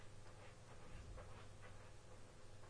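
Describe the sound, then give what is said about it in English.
A dog scratching at a door, with repeated rough rasping strokes in an uneven rhythm over a steady, noisy background. Muffled, with no voices. “That sounds like a dog scratching.”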